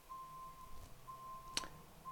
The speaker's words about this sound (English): I apologize if you hear the beeping. This is not a soundproof room.